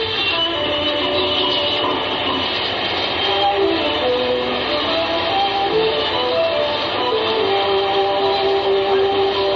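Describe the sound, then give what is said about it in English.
Slot machines in a slot machine emporium on the Ginza on a windy night chime and beep without pause, a crowd playing them, their short electronic tones and jingles overlapping in a dense, steady jumble over a constant noisy wash, with no one speaking. “Those are slot machines you're hearing. You can hear them for blocks.”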